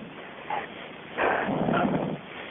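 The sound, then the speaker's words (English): A dog barks over a muffled, phone-quality line during a call to Plainview County 911: a brief yip, then a longer stretch of rough barking at moderate loudness, with no one speaking. “I've been hearing barking for a long time.”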